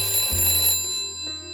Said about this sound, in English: That's when I was rattled from my stupor by a ring on the blower.